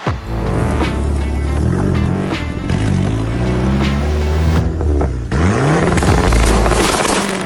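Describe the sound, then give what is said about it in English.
A loud big-turbo Dodge Neon SRT-4 car engine revs hard, its pitch climbing in repeated sweeps, briefly dropping off near the end before surging again. Sustained, with no talking. “that's Bailey's Big Turbo Dodge Neon SRT4”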